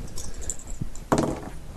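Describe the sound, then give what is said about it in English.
Dice clatter briefly across a hard surface, a few light clicks followed by a louder rattling tumble that quickly settles, with no one speaking; the roll comes up 11. “11 on the dice.”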